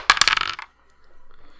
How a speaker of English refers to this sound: Let's roll that dice. Damn it. Throw it outside. Get it in the box